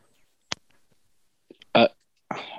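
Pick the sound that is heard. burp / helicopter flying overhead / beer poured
burp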